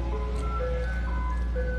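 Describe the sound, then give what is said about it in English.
A tinkly ice cream truck melody plays steadily over a low engine rumble, the bright electronic notes stepping along in a simple tune as the truck drives by. “Hold on one second. As this ice cream truck goes by.”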